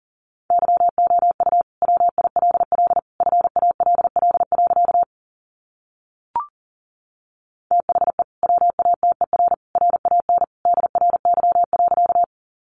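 Fast Morse code at about 40 words per minute sending practice sentences built from the 500 most common words: a single steady mid-pitched tone keyed into rapid dots and dashes, sent in dense bursts, with a pause and a brief click midway.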